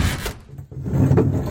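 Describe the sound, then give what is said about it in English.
A door of an isolated house bangs open with a sharp, loud burst as a man bursts in, followed by a heavy, rumbling scrape as he drags a wooden crate across the floor. No one speaks. “He burst through the door, dragging a wooden crate.”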